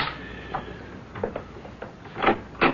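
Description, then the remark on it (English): A series of muffled knocks on a door, irregularly spaced with the last few louder, set against a faint steady hiss and no voices. “Someone seems to be knocking on the door.”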